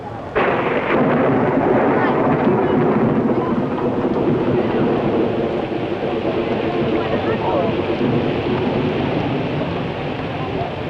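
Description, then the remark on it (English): Heavy rain pours down in a loud, steady hiss while deep thunder rumbles and rolls beneath it, the downpour continuing without a break from start to finish. “When the rains come, everything gets damp, except the enthusiasm of the visitors.”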